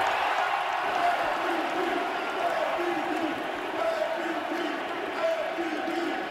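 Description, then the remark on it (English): A large crowd cheers and roars in a steady, unbroken wall of noise, with scattered shouts rising briefly above the din throughout, as Nikola Jokic of the Nuggets is named NBA Finals MVP and given the Bill Russell Finals MVP trophy. “That's great. The crowd's loving it.”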